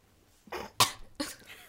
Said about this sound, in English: Was that necessary? The cough to check your levels?